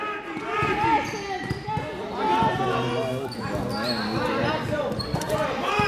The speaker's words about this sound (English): Myers just kind of dribbling, looking for something, trying to set something up.